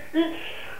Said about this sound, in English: Gesundheit.